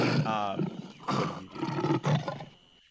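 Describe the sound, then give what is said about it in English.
A person imitates a lion with a series of rough, growling roar grunts, about four gravelly bursts in quick succession, fairly loud. “the first lion kind of addresses you with these like rough like roar grunts.”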